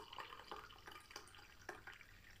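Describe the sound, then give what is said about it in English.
Tea pours from a teapot into a cup, a splashy trickle with little bright drips and gurgles breaking through a steady stream of liquid. “Pouring from a teapot into my favourite cup.”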